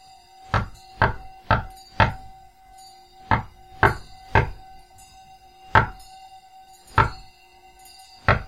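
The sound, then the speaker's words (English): Ten solid, fairly loud knocks on a wooden door: four in quick succession, a short pause, three more, then three slower, widely spaced knocks, with a faint steady hum underneath. “You knock on the circle on the door 10 times.”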